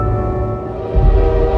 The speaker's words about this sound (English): And the whistle of the train is the ominous beginning of this story. That this is Lion, our first film for 2017.